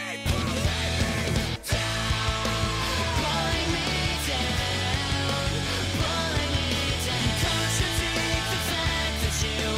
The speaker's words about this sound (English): Yeah, it cuts out, becomes acoustic for a couple lines, and then the big scream, and then into the really heavy crescendo of the song.